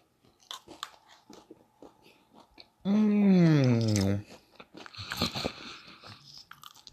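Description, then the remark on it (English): Crisp crunching of someone biting and chewing, a rapid series of brittle cracks, briefly interrupted by a loud drawn-out vocal sound before the crunchy chewing resumes. “I don't know if you can hear the crunch.”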